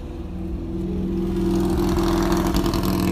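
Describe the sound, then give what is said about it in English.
A motorcycle engine revs and grows steadily louder, its throaty drone rising in pitch as it approaches and passes by, with no voices; the rider keeps riding back and forth. “I don't know why this motorcycle guy has to keep running back and forth, but he is.”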